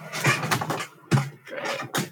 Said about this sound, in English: If you can creak that chair just a little bit more.